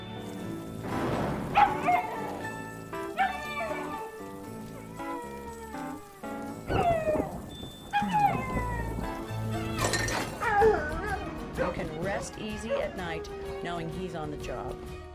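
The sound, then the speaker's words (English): A dog, Marley, barks and whines frantically during a thunderstorm over steady rain, its yelps rising and falling in pitch, with a low rumble of thunder breaking in midway and other busy sounds underneath. “Coloca as duas cenas do Marley going crazy in a thunderstorm, please.”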